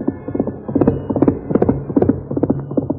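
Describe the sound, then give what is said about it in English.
Galloping horse hoofbeats pound out a fast, steady rhythm of clustered thuds, loud, with no voices over them. The horse is Silver, ridden hard by the Lone Ranger over rough ground. “In spite of the rough ground where a misstep would have meant death for both horse and rider, Silver's hoofs beat out a savage tattoo.”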